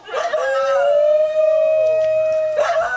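A dingo lets out a long, loud howl that rises and holds steady for a few seconds, with a second fainter howl sliding down beneath it, and no talking.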